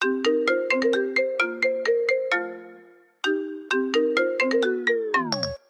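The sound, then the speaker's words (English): A phone ringtone for an incoming call plays a bright, chiming electronic melody twice with a short pause between, loud, the second phrase ending in a quick downward pitch slide as it cuts off. “Actually, we have a phone call right now from our anonymous friend.”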